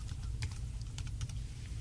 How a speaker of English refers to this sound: And of course I can just type in what I want to search for on the keyboard. So if I type in the word pure.